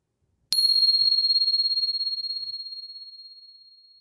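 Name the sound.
meditation bell ringing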